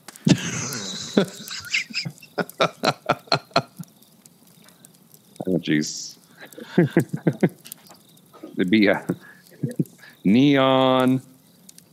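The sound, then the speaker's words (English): Frying bacon crackles and hisses, then gives way to a run of sharp, irregular pops that slowly thin out. People speak over the later part, and a long, buzzy, tonal sound comes near the end. “I've never heard bacon fry like that.”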